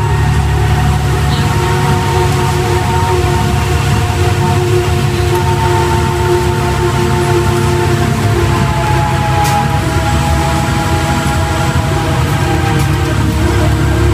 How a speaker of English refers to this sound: This is the sounds of public transit. We're now in South Ottawa, 1997 Airport at Greenborough Station, O Train.